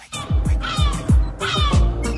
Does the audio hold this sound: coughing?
no